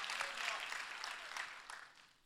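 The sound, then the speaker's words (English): A crowd bursts into sustained applause, dense overlapping claps filling the space at moderate volume, slowly tapering off toward the end. “Clap today if you're grateful that God loves you enough.”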